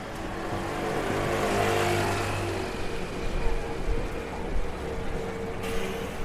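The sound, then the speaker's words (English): Steady city traffic rumbles past on Fleet Street at a traffic island, with engines droning and one vehicle revving up as it passes, a continuous busy street roar with faint voices in the mix. “So we've walked up Fleet Street a little way, and now we want to cross the road at a traffic island.”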